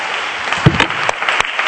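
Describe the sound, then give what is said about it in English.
A crowd claps steadily in a dense, loud wash of applause, with a few sharper claps standing out and some faint shouting mixed in. “Put your hands together and stand and clap and shout unto God, because you're in the house and you're in the body.”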